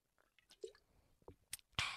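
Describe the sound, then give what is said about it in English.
Quiet sipping from a can of Saintly Seltzer: a few small wet slurps and mouth clicks, ending in a louder breathy rush of air. No one speaks. “Let me have a sip of my Saintly Seltzer.”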